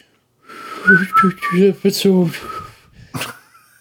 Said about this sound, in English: I'm just gonna whistle while I podcast. I guess it's hard to do. Can I talk and whistle at the same time?